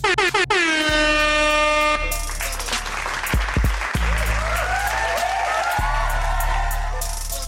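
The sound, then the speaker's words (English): A loud air horn blasts with strong stacked tones for about two seconds, then cheering, applause and whoops from a crowd carry on, with more horn-like tones sliding through the noise. “All right, bet I got an air horn for y'all.”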